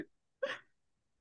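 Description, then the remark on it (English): A single small burp, short and soft, in an otherwise quiet moment with no talking around it. “I just like burp a little, sorry.”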